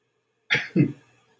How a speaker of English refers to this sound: Excuse me, worst thing I'm gonna sneeze.